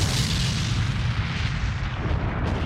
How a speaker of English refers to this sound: There was an explosion, and the doors to the study were ripped from their hinges and went flying across the room